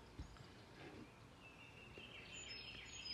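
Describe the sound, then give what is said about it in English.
Faint birdsong drifts through a steady outdoor hiss, with thin high chirping lines rising and trailing off in the background. No one speaks. “These birds in the rising are perfect in every way because they embody source.”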